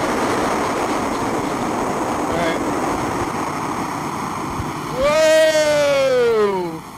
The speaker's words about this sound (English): Car is loud. Come on, car, buddy.